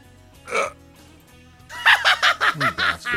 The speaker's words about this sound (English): See, when you do the horn and then follow it up with a laugh, that's not okay.